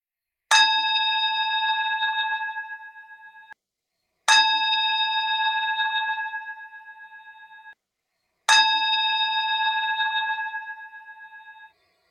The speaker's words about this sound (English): I'm going to ring the gong to begin and to conclude.